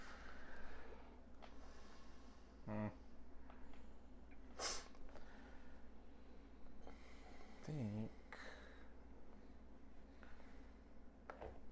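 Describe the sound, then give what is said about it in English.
A voice imitates a heavy, bull-like snort, with two forceful rasping bursts several seconds apart and a sharp breathy puff between them, over a steady low background hum. “Breathing heavily. It's kinda like a bull snort where you see like a cloud of steam come out too.”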